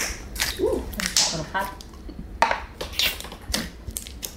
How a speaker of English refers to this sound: So this one's detox water. It's a clear slime with fruit pieces in it.